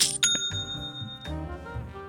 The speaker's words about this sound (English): It's the best kind of notification, the sound of another sale on Shopify.